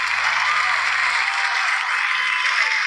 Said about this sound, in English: Thank you all for holding for the applause.